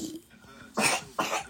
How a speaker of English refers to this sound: Why is my baby coughing? He wasn't coughing just now.